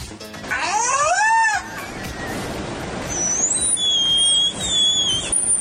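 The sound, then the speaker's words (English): A killer whale imitates human speech in English, giving a rising, harmonic-rich call followed by long, shrill, wavering whistles over watery noise, with no people talking. “That was a killer whale speaking English.”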